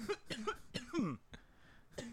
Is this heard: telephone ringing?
no